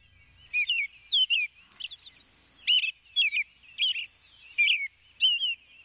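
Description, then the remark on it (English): A male American robin sings a steady run of short, clear whistled phrases, about eight of them separated by brief pauses, with no voices. “This is a song. So this is what a male would sing to attract a female, or potentially to deter another male from its territory.”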